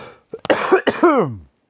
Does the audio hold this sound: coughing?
yes